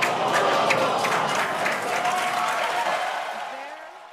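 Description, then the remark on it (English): A big crowd roars and claps in dense, continuous cheering with shouts and whoops mixed in at the first test launch of SpaceX's uncrewed Starship rocket from Boca Chica, Texas, loud at first and slowly fading over a few seconds. “But first, a test of the world's most powerful rocket has ended with a bang, also cheering.”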